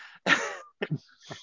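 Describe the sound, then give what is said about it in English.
A loud cough bursts out, followed by a couple of shorter throat-clearing hacks, picked up right at an unmuted microphone, with no talking. “Oh, yes, I have a cough button. Am I supposed to use it?”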